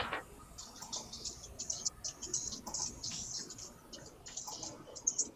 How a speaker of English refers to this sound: He's just rolling the dice.